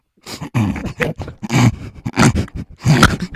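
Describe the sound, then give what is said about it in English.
A person imitates a pug with a run of snorting, grunting vocal bursts, about five rough nasal snuffles in uneven rhythm, fairly loud and with no words. “Next up, a pug.”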